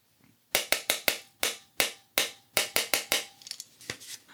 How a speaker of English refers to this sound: And what I've noticed is, if you take a pen or pencil crayon and tap on a sort of tin or nearby tub of Pringles, it sounds like this.